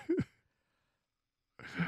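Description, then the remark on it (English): A short yawn trails off with a falling, breathy voice, then a pause of silence before another soft, drawn-out vocal exhale begins. “I'm yawning.”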